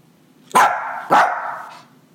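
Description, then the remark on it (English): A dog barks on command, letting out two loud barks about half a second apart, the second one stretching into a longer, drawn-out woof before fading. No one speaks. “Sit. Got it. Speak.”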